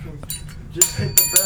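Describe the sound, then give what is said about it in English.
A bell is struck twice in quick succession, each hit giving a bright metallic ding with a short ringing tail, fairly loud over a faint low murmur of voices. “Just hit the bell. Just hit Juicy Smollett. That's all you gotta do.”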